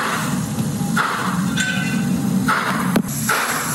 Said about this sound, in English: At 10 p.m. that night, the sound of six loud bangs, apparently gunshots, were captured on a neighbor's surveillance camera.